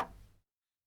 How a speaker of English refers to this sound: And you hear the door on the far wall, the one that she came through. You hear it unlock.